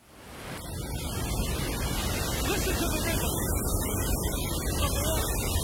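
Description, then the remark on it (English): Ocean waves wash in a steady, continuous roar of surf, fairly loud, with only subtle swells in the hiss rather than distinct breaking crashes. “Listen to the rhythm. Being obedient to Psalm 148. Just said, you spoke us into existence. And we'll just get in rhythm. The ebb and flow of the water.”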